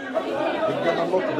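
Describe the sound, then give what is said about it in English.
Dense crowd chatter, many overlapping voices talking at once in a steady, busy murmur with no single voice standing out, filling the crowded waiting room of Shifa Hospital, Gaza's main hospital, as crowds clamor to see a doctor and security guards try to control them. “Security guards are trying to control the crowds clamoring to see a doctor.”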